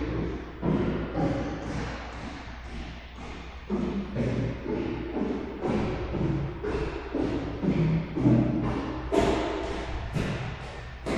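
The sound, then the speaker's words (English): Heavy footsteps stomp up the upper flight of a stairway, recorded from below, each foot deliberately slammed down in a steady rhythm, each step landing as a loud, booming thud with a brief scuffing ring and the stairway's natural reverb, continuing for over a dozen steps with no voices. “And just for fun, he asked me to go and walk up and down the stairs, like on the upper flight, and he recorded it from below where I was walking, and it sounded very bizarre, but here's the recording of me walking in the stairway.”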